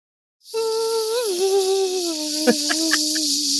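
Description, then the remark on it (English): A kazoo plays a buzzy, nasal tone that holds steady, dips and wavers in pitch, then settles lower, with a few short percussive taps near the end and no talking. “Well, does anybody have any sort of a kazoo or a whistle?”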